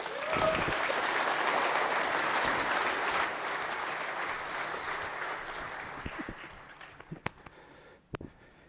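Steady applause from an audience welcoming a pastor who comes up to speak lasts for several seconds, then thins out and fades to a few scattered claps near the end.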